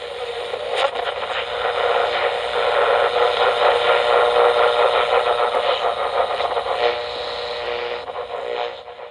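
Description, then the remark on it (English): A car engine runs steadily for several seconds, a continuous, fairly loud rumbling drone that holds even throughout and eases off slightly at the end, with no voices. “You're driving us there. How? Get in the car. I'm in the car. All right. I'm in the car. Brum, brum.”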